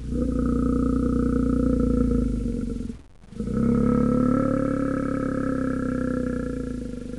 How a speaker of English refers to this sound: Here goes a polar bear.